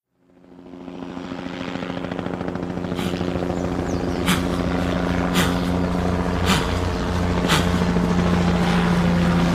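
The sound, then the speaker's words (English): A Highway Patrol helicopter drones steadily overhead, its low rotor hum constant and loud, with sharp periodic bursts of blade noise cutting through about once a second; no one speaks. “Highway Patrol is sending a chopper.”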